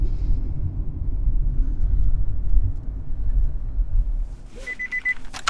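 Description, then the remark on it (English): A car drives the 15 minutes to the Orange County Family Courthouse with a steady low engine rumble filling the cabin, then a short series of high electronic beeps sounds near the end. “We drive the 15 minutes to the Orange County Family Courthouse.”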